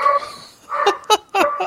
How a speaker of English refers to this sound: How can you tell? Well, it's the doorbell and the dog going bananas.